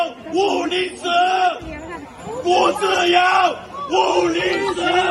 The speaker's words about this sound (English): He's saying, give me liberty or give me death. Okay, that's what he's shouting. And you've got people actually chanting along with him, okay, which is normally not the case.